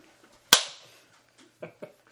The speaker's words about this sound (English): Can you high five? Can I?